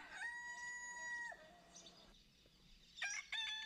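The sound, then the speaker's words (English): A rooster on a farm lets out one long, loud crow that holds steady and then drops away, followed by a couple of shorter, sharp calls near the end. “Someone's coming out to feed the chickens.”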